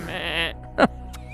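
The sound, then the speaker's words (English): A person imitates a goat with one shaky, wavering bleat lasting about half a second, fairly loud, followed by a short soft thump and quiet. “Capricorn's a goat, right?”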